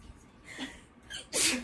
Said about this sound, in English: Bless you.